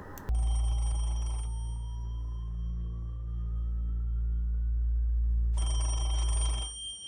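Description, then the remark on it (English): A telephone rings in two bursts, one at the start and another near the end, with a steady low hum and a faint rising tone filling the quiet stretch between rings. “We are introduced to Francesco as he talks on the phone and kills a zombie at the same time.”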